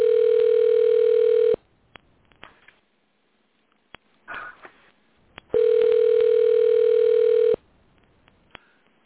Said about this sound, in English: And we got him. You hear the phone ringing now. He's going to come on in a few minutes.